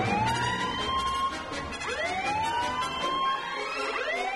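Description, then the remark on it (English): Loud wailing alarm sirens blare in Bungie's enclave on the Jubilee wheel, rising and falling in repeated sweeping cycles, sounding steadily throughout over a dense background rumble, with no voices present. “Before Han could respond, sirens began to blare and the illumination in Bungie's well-appointed enclave flickered.”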